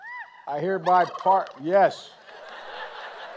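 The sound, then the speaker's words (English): Turkeys gobble loudly in a few quick, warbling bursts, then the calls give way to a low, noisy background murmur. They are a pair of turkeys pardoned by President Biden in Washington. “The Birds of Honor received VIB treatment on their trot to Washington, basting in glory at the Willard Hotel and gobbling up attention everywhere they went.”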